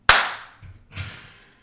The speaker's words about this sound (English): All right, I'm going to clap.